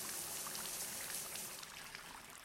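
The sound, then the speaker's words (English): Shower water runs in a steady, hissing stream with faint splashes and drips mixed in, continuous and fairly soft throughout, with no voices. “turn off the shower.”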